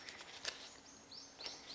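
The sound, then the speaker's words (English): Faint bird chirps, a few short high-pitched tweets and rising whistles scattered over a couple of seconds against a soft outdoor hiss. “Tweet, tweet. A bird call.”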